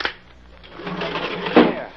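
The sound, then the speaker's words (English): The heavy door of a sealed railroad car, its railroad seal broken, is pulled open, a rising mechanical rumble and scrape with a sharp metallic clunk near the end as it slides free. “Open up that car.”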